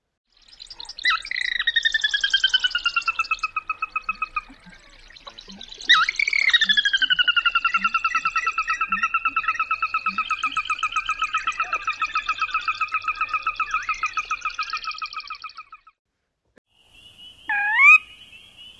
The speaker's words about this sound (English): Soras also have an alarm call that sounds like this. So one more time, all the sounds of the sora.